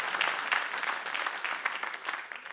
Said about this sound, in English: Come on, give the Lord a big hand clap.